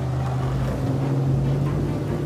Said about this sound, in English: So I go there and I do this jet ski experience. And I'd never done anything like that.